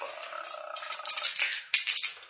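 Three or four dice clatter and tumble across a hard surface in a quick, rattling burst of sharp clicks that settles within a couple of seconds, with no talking.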